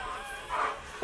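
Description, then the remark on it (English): A dog, Ladybug, barks because the yard worker has come into the backyard: first a muffled, softer woof and then a sharp, louder bark right at the end, over a low background hum. “And my dogs are about to start barking because the guy just came in the backyard.”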